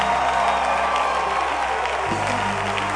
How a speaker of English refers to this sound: Will you give Jesus another clap and a shout?